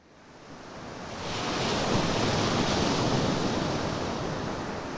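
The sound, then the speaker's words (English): Steady roar of ocean surf on a beach, swelling over the first two seconds into a broad, continuous wash of crashing waves mixed with blustery wind, with no voices. “Well, we're walking here at the interface between the land and ocean”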